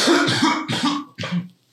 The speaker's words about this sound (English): I'm coughing real hard. I had to do this earlier. Step away from everyone.